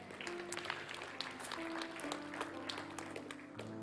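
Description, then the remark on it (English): Quiet, restrained golf-clap style audience applause, a soft patter of polite clapping that continues steadily for a few seconds over a faint low hum, with no voices. “I notice your claps are getting more and more like a golf clap, so we'll just move on.”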